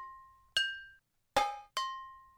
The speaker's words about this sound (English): The idea of the piece is it starts out with just, people banging on pots and pans very gently, and it sort of becomes rhythmic and goes into a sort of dreamlike state.